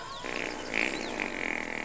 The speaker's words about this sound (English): I think he farts and his fart echoes in the canyon.